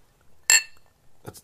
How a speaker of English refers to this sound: For those of you that thought I had a preemptive clink there, it's because we have these giant balls of ice in our bourbon.